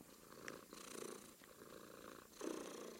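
A cat purrs steadily, a continuous low rumbling with rhythmic pulses of breath in and out, fairly quiet but clear, with no talking.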